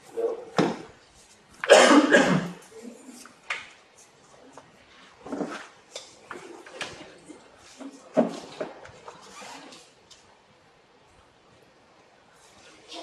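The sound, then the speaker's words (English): A harsh bout of coughing from a speaker with a throat problem: one loud burst near the start, then a scattered series of smaller coughs and throat-clearing noises, trailing off into quiet. “And I'm going to have a cough because this problem my throat.”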